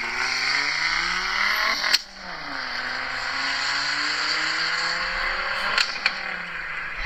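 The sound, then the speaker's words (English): A car exhaust revs hard and loud at the rolling exhaust contest at the Import and Performance Nationals, climbing in pitch, dropping sharply around two seconds with a crackle, then building again in a long sustained rev with pops near the end. “And at that show, exclusively, they do a rolling exhaust contest. And there are some very cool sounds.”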